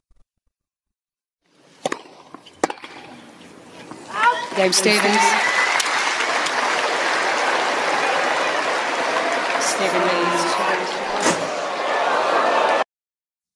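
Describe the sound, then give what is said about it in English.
A few sharp, loud cracks of a female tennis player smashing her racket against a hard court, one after another, over a steady wash of crowd noise with a voice talking. “Well, here's one video of her smashing her racket.”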